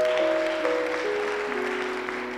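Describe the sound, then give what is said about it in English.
An audience claps for Jesus steadily in a dense, continuous wash of applause, while sustained keyboard notes step downward in pitch beneath it. “Clap for him. Clap for Jesus.”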